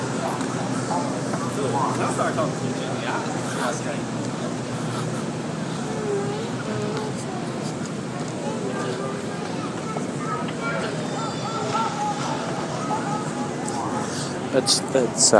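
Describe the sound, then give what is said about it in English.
Steady rumble and hiss of a two-car automated people mover train running within a terminal, continuous throughout with a few faint rattles and clicks, and indistinct voices murmuring. “A two-car paper automatic people mover.”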